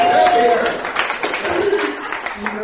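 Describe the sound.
A crowd applauds steadily for a few seconds, a dense, loud wash of clapping with a few voices and cheers mixed into the noise.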